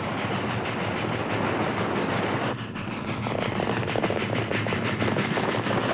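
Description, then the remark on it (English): A special train bound for Dodge City rumbles steadily along the tracks, loud, its rhythmic clickety-clack growing quicker as it gathers speed and nears a curve, with no voices present. “Are you sure there's $80,000 coming through on that train?”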